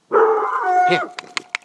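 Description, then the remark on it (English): A dog lets out a long, wavering howl-like bark, then three short, sharp barks in quick succession, barking at a car with its headlights on. No one speaks. “That scared you, did it? Did that frighten you? That's a car, okay?”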